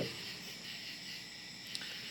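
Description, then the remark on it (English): A steady, dense chorus of crickets chirping on its own, a continuous high-pitched trill that holds at an even, moderate level throughout. “I hear crickets chirping. Lots of crickets.”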